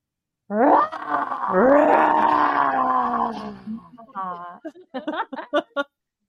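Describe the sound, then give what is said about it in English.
People imitate a lion's roar, their voices joining in one long, loud, drawn-out bellow that trails off into a series of short, choppy vocal bursts, clear. “Maybe everyone would like to hear us roar as well.”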